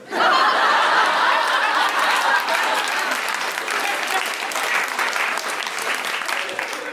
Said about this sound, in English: I wish it ended with that. I wish it ended with that applause. It didn't.